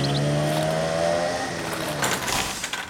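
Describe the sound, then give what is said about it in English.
A bus engine revs up loudly with a strong low hum that shifts in pitch, then rumbles and fades slightly as the bus pulls away, with no voices. “I can see the bus moving.”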